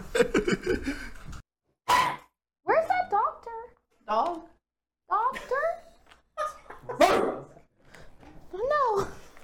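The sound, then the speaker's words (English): A person on all fours imitates a dog with a string of loud yaps and barks, about eight voiced bursts in uneven rhythm separated by brief pauses, some rising into whiny yips. “Gets on all fours and starts barking.”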